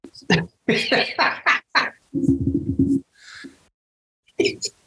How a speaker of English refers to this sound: What coward burp.